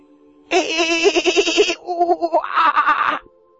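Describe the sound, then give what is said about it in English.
A voice makes a clumsy hoot owl imitation: a loud, wavering, bleat-like cry of about three seconds with a rapid tremble, shifting to a brighter, higher tone partway through. “Hoot owl. I think that's a hoot owl. It was, it was a bad attempt at some kind of wild animal thing.”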